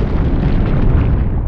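A missile launch sound effect made from deep low-frequency rumbles slowed way down with the high frequencies rolled off: a loud, steady, deep roaring rumble with muffled highs, sustained without a break for the whole moment and no voices.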